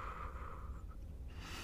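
A slow, deep, controlled breath: a steady airy exhale that fades, then the hiss of a fresh inhale beginning, with no talking.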